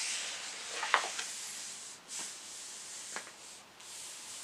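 Pages of a photo book being turned: a few soft, brief papery swishes and rustles, one slightly sharper flick, over a steady faint hiss with no talking.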